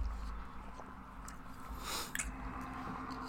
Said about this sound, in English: I'll look at him, get a big sip of water.